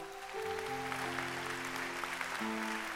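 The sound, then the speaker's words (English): An audience claps their hands in a steady, dense wash of applause while sustained organ or keyboard chords hold underneath, shifting pitch a couple of times. “Clap your hands.”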